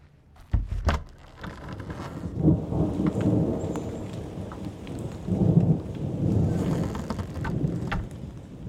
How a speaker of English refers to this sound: It's pouring outside.